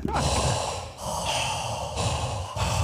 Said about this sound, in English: Heavy breathing. Heavy breathing.